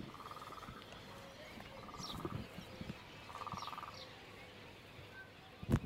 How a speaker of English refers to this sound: Oh, and now I hear frogs. I hear a frog.